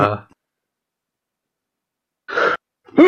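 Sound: sneeze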